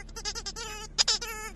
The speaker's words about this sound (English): A squeezing... Squeezable, squeaking monkey head. Will amuse me for hours.